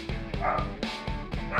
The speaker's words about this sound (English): I hope the editors have left Joe's barking dog in the back for all this.